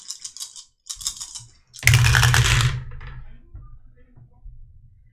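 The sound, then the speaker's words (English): Dice clatter down through a dice tower: two quick bursts of light clicking, then a louder tumbling rattle that settles into a few scattered taps. “So, yeah, this is the dice tower I bought that we're using.”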